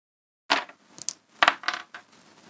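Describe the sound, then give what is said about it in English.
Percentile dice, rolled to randomly pick a magic item, clatter across a hard tabletop: a sharp first strike, then a quick series of rattling bounces and clicks that tumble to a stop. Fairly loud, with no voices. “Okay, I need percentile dice, sir.”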